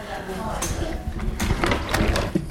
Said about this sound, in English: And just in front of us you will see a massive wooden case with about 16 drawers, which all contain lead type. Shall I open one and show you?